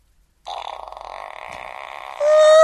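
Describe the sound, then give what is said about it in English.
A voice imitates a fart with a buzzy, fluttering raspberry that starts abruptly and runs for about two seconds, turning louder and steadier near the end. “We try to make a fart sound.”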